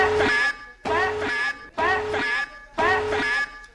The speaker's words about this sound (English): Alvy, may I please have a big, fat alarm for our new Chet.